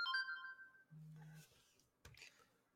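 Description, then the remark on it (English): A phone ringtone sounds briefly: a bright electronic tone at the start, then a lower buzzing tone, followed by a short clatter or rustle. No one speaks. “As I forgot to mute my phone.”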